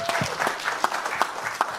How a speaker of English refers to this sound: I'm very pleased that we see a former heavyweight champion of the world right here in Hasim Rahman. Champ, round of applause.